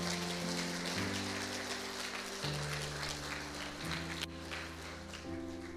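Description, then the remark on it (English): A crowd applauds steadily for several seconds for the people up front, a dense patter of clapping over sustained keyboard or organ chords that shift every second or so. No one speaks. “Just go ahead and give them a round of applause and just thank them.”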